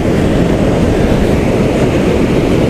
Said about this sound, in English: Wow, I love being on beaches. I love hearing the sea. You really get to see time at work.